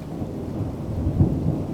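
A low, steady rumble of thunder rolls beneath a constant hiss of rain, swelling slightly toward the end with no voices present.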